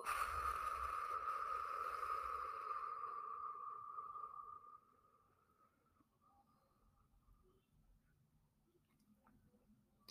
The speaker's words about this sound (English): And our exhale, you want to try and exhale longer than your inhale. So here we go. Breathe in. Blow it out.